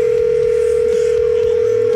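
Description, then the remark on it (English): A loud, steady telephone dial tone on the Ollie's Bar and Grill soundstage phone system, placing a call to David Higgins of the Southern Maryland Chronicle for the Southern Maryland Guitar Guru Show, hums clearly without a break for about two seconds, with no voices, before it cuts off. “We're going to get the Ollie's Bar and Grill soundstage phone system cranking.”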